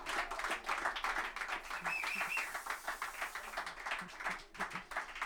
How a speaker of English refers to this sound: Thank you very much. Thanks for clapping. It's obligatory at a concert, isn't it? You just have to clap once, you know.